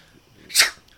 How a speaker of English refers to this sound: It clears out my sinuses. Oh. Shouldn't have hit that shit. Now I'm sneezing.